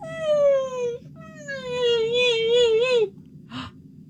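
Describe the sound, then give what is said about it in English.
A person mimics coyote howling: a drawn-out, wavering, high-pitched howl, a brief pause, then a longer quavering howl, ending with a short yip. Fairly loud, with no other talk. “And I just hear...”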